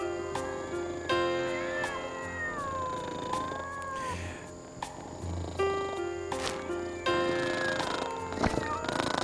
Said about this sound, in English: We're listening to some cats that were friends, some cats that were lovers, and some others.